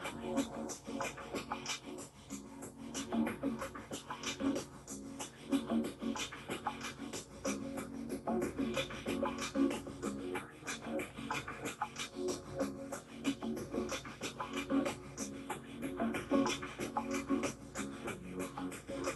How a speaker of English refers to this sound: Alkaline breathing. Keep going. Double the speed.